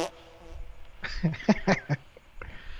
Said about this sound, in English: So look, check it out. This is how I named them. Cartoon fart. Classic fart. High fart.